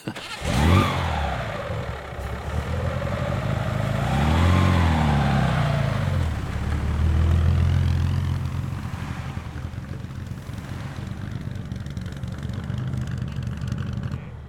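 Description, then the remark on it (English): A 1938 Alfa Romeo racing car engine, an experimental car with Porsche-designed independent suspension, roars past, its pitch sweeping up and down as it revs hard, then a steady loud engine drone continues for several seconds, without talk. “Yes, that's the 1938 Alfa.”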